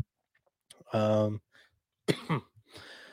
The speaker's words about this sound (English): I am like choking now. I couldn't talk earlier in the podcast. Now I can't stop coughing.